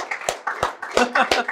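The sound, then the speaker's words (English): A crowd claps in a steady, even rhythm, about four sharp claps in quick succession, while voices talk or sing over them at moderate volume. “Can somebody put your hands together and I told you how you clap.”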